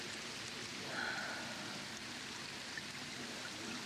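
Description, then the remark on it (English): Light rain falls steadily, a soft, even patter and hiss that fills the background without a break, fairly quiet and with no voices. “It's starting to rain.”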